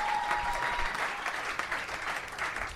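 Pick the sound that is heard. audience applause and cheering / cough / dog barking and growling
audience applause and cheering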